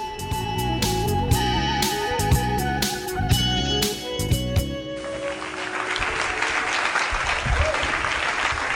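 Music plays with steady beats for about five seconds, then gives way to a sustained wash of audience applause, dense and fairly loud, clapping continuing to the end.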